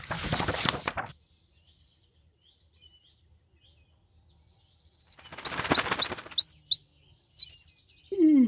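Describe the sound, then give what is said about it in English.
Two bursts of fluttering wings, then a small golden songbird perched in a window gives a handful of short, bright chirps in the morning, spaced irregularly amid otherwise quiet surroundings. “Like any morning that year, I awoke to find a golden songbird perched in my window.”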